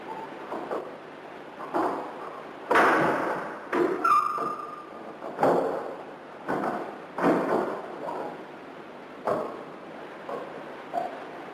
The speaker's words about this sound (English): And to our utter astonishment, we recorded the sound of it opening a door, but a door which doesn't exist.